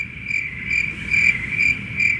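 Crickets chirp steadily in a high, pulsing trill, with about five evenly spaced bursts over a low background hum, clear with no voices.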